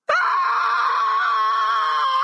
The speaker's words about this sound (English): Let's start out, though, with the legendary and insane Luke scream from the classic Star Wars video game Jedi Outcast.